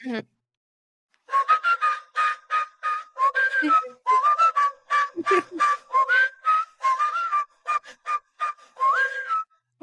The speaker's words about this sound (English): You want me to just whistle it? Yeah, you got it. Okay. You want to pause it and I'll whistle it?